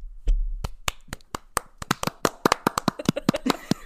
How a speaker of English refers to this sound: It is a big day because today is our 30th Starcourt Study Hall episode. Woo! Applause, applause.